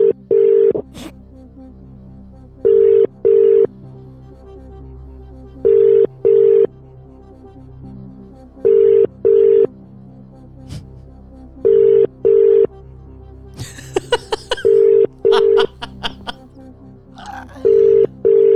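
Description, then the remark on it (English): An outgoing phone call placed outside WhatsApp rings in steady double pulses, about seven pairs evenly spaced and clear, with a few faint clicks and rustles between rings. “No, because you're going out of WhatsApp to make the call.”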